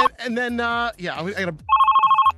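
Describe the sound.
A voice speaks briefly, then a phone ringtone for an incoming call sounds as the caller tries and fails to connect, a steady warbling two-tone trill that pulses rapidly for under a second, loud.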